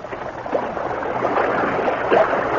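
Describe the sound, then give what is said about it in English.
A stream of water flows steadily, carrying a floating bottle, a continuous rushing and babbling with small splashy bursts, heard on its own without any voices. “Both men stood beside their horses and watched the floating bottle carried toward them by the stream.”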